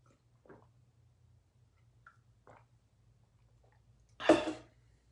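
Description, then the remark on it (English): Someone sips water: a few soft, wet mouth sounds spaced apart, then one louder breathy gulp near the end, over a faint low hum. “Let me get a sip of my quality H2O before I dive into it.”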